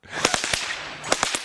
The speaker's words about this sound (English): That's a whip cracker. This guy plays songs with whips.